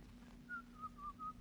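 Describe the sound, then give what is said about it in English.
Someone whistles the tune Turkey in the Straw, a bright, bouncy, quick run of clear pitched notes rising and falling over a faint hum, with no talking. “Oh, stop whistling that turkey in the straw.”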